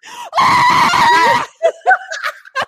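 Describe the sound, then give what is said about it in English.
A loud, high-pitched ululating howl, a vocal sound made with a loud voice and rapid back-and-forth movement of the tongue and uvula, wavers rapidly for about a second, then breaks into several shorter, choppy yelping calls before ending abruptly. “It is a long, wavering, high-pitched vocal sound resembling a howl with a trailing quality.”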